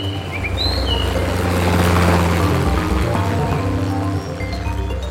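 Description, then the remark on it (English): A helicopter's steady rotor drone with low, throbbing chop swells louder toward the middle as it passes by, arriving at a farm in the Philippines, while a few birds chirp faintly in the background. “I eagerly awaited his arrival by helicopter from our Kamantian clinic in the mountainous jungle village in the Philippines to our Mountain View farm.”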